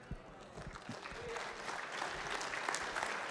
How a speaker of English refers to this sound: I appreciate your clapping, but hold on, because that's what we do in the American church.